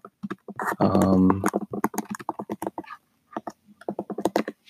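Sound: computer keyboard typing clicks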